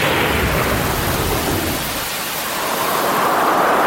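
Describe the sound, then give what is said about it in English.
Steady heavy rain hisses loudly throughout, with deep low thunder rumbling underneath during the first half before the downpour takes over. No voices are present. “Storms are Australia's most costly natural disaster.”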